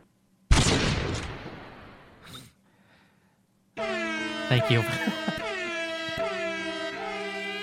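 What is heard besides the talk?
air horn sound effect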